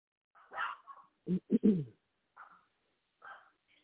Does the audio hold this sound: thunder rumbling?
no